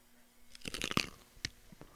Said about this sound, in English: Crunch. Celery carrot. Boom. This is the real Captain Crunch over here. Celery and carrots. That's crunch.